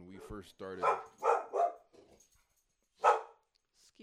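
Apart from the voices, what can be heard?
dog barking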